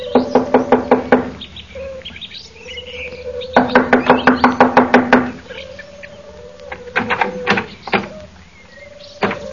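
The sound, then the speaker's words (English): Two quick bursts of loud, rapid knocking on a wooden door, each roughly eight to ten raps, followed by a few scattered single knocks, with faint birdsong chirping in the background. “I'll knock on the door.”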